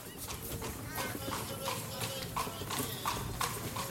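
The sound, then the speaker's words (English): Horse hooves clip-clop at a brisk, steady trot as a private horse-drawn carriage arrives at a door in London, each sharp knock landing about every third of a second over a constant low rumble. “Three years had elapsed from these events when a gentleman alighted from a private carriage at the door of a certain London attorney.”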